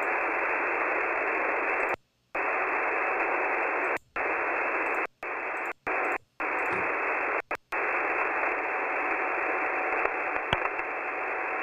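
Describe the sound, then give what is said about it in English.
Steady, dense radio static hisses loudly, cutting out abruptly into brief silences several times: a crackly recording someone made of a real radio broadcast, repeatedly dropping out. No voices are heard. “It's kind of staticky because it's real radio. This is somebody recording it.”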